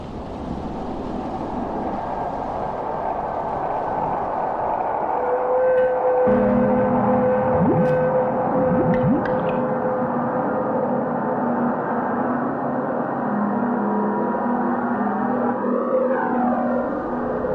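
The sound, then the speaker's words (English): Constant, unsettling white-noise drone from the opening of the film Eraserhead, a dense hiss and rumble at steady loudness, layered with low industrial hums, a few faint metallic clicks midway and a wavering whine near the end. “Fade in on this ever-present white noise. This white noise is almost constant throughout this movie.”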